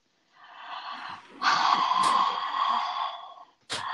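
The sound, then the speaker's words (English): Loud, heavy breathing: a long drawn-out exhale that grows forceful and airy midway, then a brief pause before another sharp breath begins. No talking. “We're just gonna start off this episode with some heavy breathing and go.”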